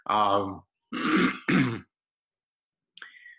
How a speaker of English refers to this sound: excuse me, I still have this remnants of this cough.